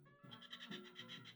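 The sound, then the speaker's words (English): A kookaburra call from a Pet Collective video: a loud, rapid, rhythmic run of harmonic, cackling pulses lasting just over a second, with no one talking over it. “It's birds. It's bird noises. That's a kookaburra.”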